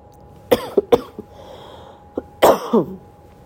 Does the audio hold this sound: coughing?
yes